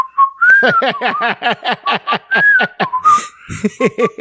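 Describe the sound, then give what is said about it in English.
A person whistles a bouncy, upbeat 1970s disco tune, the clear tone gliding up and down, accompanied by rapid rhythmic laugh-like vocal bursts through most of the few seconds. “My dad, anytime we were doing anything, he would always whistle.”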